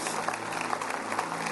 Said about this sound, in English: Yeah, you can clap better than that. That was half-hearted. Come on now.